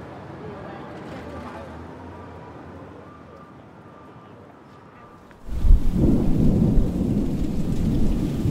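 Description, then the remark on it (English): A quiet outdoor hush gives way, just past halfway, to a sudden loud crack of thunder that rolls straight into a heavy, roaring summer downpour in New York, steady until the end. “I feel like it's about to, the sky's about to open up.”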